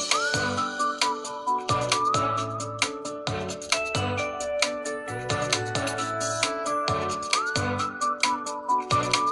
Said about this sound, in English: Kind of like the little whistling.